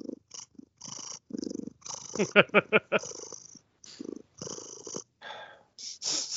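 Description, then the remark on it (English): A cat purrs in rhythmic low rumbling pulses, with brief breathy hisses between them and a few louder bursts partway through. “I wish I had a cat.”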